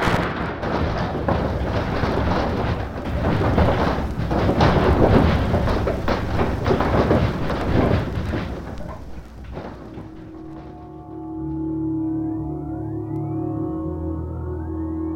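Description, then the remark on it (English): An earthquake rumble: a deep, roaring, rattling rumble surges loudly for about ten seconds, then gives way to a steady low hum with thin rising whistle tones. No one speaks. “We believe this to be a most unique and unusual recording, and we know that these sounds will bring back vivid memories to all who experience this terrifying tremor of the Earth's surface.”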